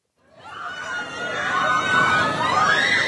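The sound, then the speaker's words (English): A dense outdoor crowd at a beachside amusement park in Rehoboth Beach, Delaware, in summer swells into excited, high-pitched shrieks and cheering, blending with loud chatter; the joyful screaming rises steadily and stays loud throughout. “The screams of joy are back this summer at Funland, a beachside amusement park in Rehoboth Beach, Delaware,”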